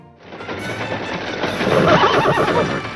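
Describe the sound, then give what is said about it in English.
A horse whinnies loudly, a drawn-out, quavering neigh that swells toward the end and fills the whole moment, with no one speaking. “Just stand long enough to water the horses.”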